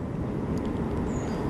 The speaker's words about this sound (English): There's a train.